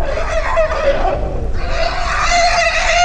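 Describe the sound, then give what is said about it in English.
An infant elephant vocalizes while trying to eat: loud, continuous squealing calls with a raspy, harmonic tone, wavering in pitch and briefly dipping halfway through, with no talking. “He played some elephant noises.”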